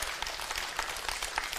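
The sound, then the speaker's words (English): An audience at Connect applauds its exhorters one morning with dense, steady clapping, many hands overlapping into a continuous crackle at an even level with small bursts throughout, no voices audible. “Give our exhorters a big round of applause this morning.”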